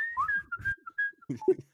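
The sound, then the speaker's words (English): A person whistles a short, wavering tune as a whistling solo, the pitch sliding between notes, with a few soft breathy or muffled sounds mixed in toward the end. “There's a bit shit of whistling.”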